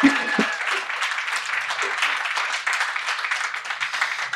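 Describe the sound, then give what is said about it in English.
A crowd claps and applauds steadily, a dense wash of many hands at moderate volume, sustained without letup for several seconds. “A huge round of applause for Andrea Quinn, the most stressful job.”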